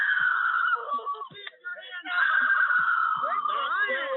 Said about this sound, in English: handcuffing her as she screamed for her mother to help.